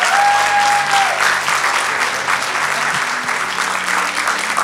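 Sustained applause from a large audience, a dense, steady wash of many hands clapping at constant loudness, with a brief high whistle-like tone near the start.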